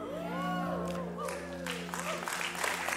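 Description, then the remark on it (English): A church audience breaks into clapping at news of the offering total, swelling into steady, dense applause over a sustained low hum, with murmuring voices and a few cheers mixed in. “You shouldn't clap yet.”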